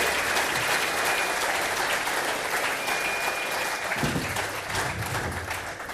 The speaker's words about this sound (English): Round of applause, come on, get them up.